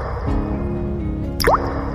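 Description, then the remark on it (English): A single bright water drip lands with a quick rising plop, heard clearly over a steady low background hum, with no one speaking. “Speaking of paint, I think I see a drip.”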